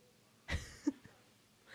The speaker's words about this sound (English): I coughed. Bless you. Thank you.